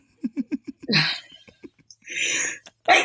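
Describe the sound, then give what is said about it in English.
A quick series of short, gasping breaths builds up to a sharp, noisy sneeze, followed by a further breathy burst and another abrupt exhale, fairly loud. “Bless you.”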